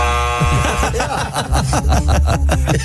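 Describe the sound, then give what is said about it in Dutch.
A new, harsh, buzzing doorbell drones loudly for about three seconds, its raspy electric tone wavering and stuttering rather than holding perfectly steady. “Ik heb een nieuwe deurbel. Hij klinkt als een zoemer.”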